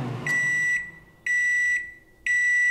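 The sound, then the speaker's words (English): A microwave oven beeps three times, each tone about half a second long and evenly spaced a second apart, loud and clear with no voices present. “The microwave. I told you not to put metal in the science oven.”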